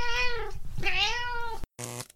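A cat meows loudly: two long, wavering meows run together, then after a short silence comes a brief third one. No one speaks.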